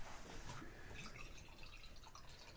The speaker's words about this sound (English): Listen to that. Sucker pour.